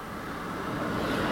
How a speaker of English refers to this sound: Car after car is now driving down what I thought to be a quiet suburban street.